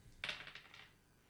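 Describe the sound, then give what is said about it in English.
Two six-sided dice rolled for a tabletop game: a quick rattle of small hard objects tumbling and clicking across a surface, a sharp first impact followed by several lighter bounces that fade within a second, alone. “Roll both dice then? Yep, roll those two.”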